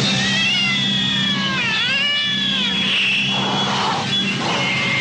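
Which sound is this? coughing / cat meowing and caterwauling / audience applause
cat meowing and caterwauling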